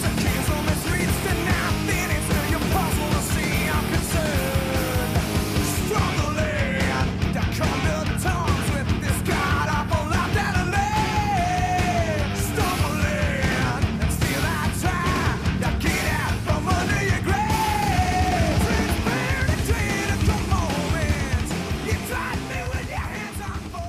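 Heavy thrash metal song with loud, dense distorted guitars and pounding drums driving steadily, while a shouted, gritty male vocal rides on top with rising and falling held notes.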